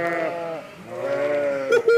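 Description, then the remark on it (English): A sheep bleats loudly, two long wavering calls in quick succession followed by a short, sharper bleat at the end. No one speaks. “so I keep him in the living room to keep the elephant in the kitchen, which keeps all the sheep in the back garden.”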